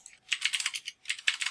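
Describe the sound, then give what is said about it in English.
Rapid clicky keystrokes from a mechanical keyboard in two quick bursts with a short pause between, crisp, with no voices present. “Yes, you can hear me typing on my mechanical keyboard.”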